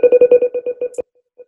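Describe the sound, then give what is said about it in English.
A spinning-wheel sound effect from an on-screen wheel after spin is hit: a fast run of bright electronic ticks that gradually slows and stops after about a second, followed by one faint, soft blip. No one speaks. “There's the wheel. I hit spin.”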